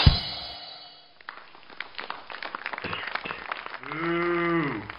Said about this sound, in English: Uh-oh, I guess we're doing a Halloween show, because I just heard a boo.